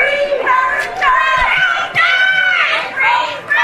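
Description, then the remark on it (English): A crowd of protesters shouts and screams 'genocide' and 'Free Palestine' in loud, overlapping bursts at a Christmas tree lighting in Nantucket, rising and falling in waves like chanting, with high strained cries cutting through the din. “He was shopping and he was at some lighting of a Christmas tree there, and the entire time he was out there, they were screaming genocide. Free Palestine. Here's a little bit of how that sounded.”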